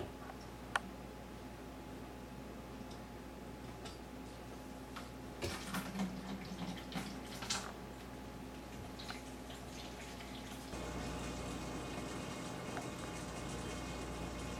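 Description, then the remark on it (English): Wine trickles steadily back into a clean, rinsed glass carboy to age, a soft continuous liquid rush with a few light clinks and drips partway through, the flow growing fuller near the end. Quiet, with no talking. “So we're putting the wine back in our clean carboy now.”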